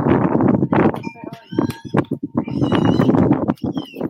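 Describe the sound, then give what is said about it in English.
High, shrill squeals from several pigs, fairly loud, rising and falling in bursts over a steady wash of grunting and voices talking in the background. “I hear the pigs squealing.”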